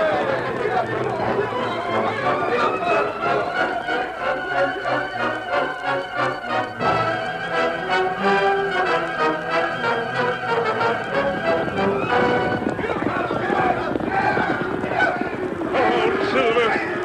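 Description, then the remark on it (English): A cattle stampede thunders along, dense galloping hooves pounding in a rapid, continuous rhythm, loud, mixed with voices and a steady tonal backdrop throughout. “Cattle still stampede.”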